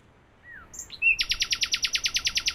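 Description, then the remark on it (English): A nightingale (Luscinia megarhynchos) sings alone at night in the city at Temple Bar, clear: a few thin rising whistles, then a fast, even run of loud repeated chirping notes that keeps going to the end. “Euskenia Megarinchos, Nightingale.”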